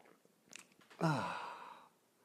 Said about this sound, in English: Fill it with your favorite liquid. I like coffee. And join me now for the dopamine hit of the day, the thing that makes everything better. It's the unparalleled pleasure of the simultaneous sip, and it happens now. Go.